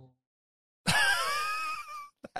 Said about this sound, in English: Yeah, he's snoring like a fucking chainsaw.